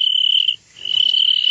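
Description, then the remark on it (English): A little cricket chirps loudly and steadily, a high continuous trill that stops briefly for a moment before resuming just as strongly. “Now, George, he's just a little cricket, and he's not hurting you.”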